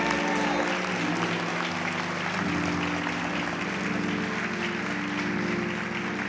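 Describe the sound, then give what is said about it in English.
A church audience applauds steadily for several seconds, giving a hand clap of praise to the Lord, a dense wash of clapping over sustained organ or keyboard chords playing underneath. “If you received anything from that today, give the Lord a hand clap of praise.”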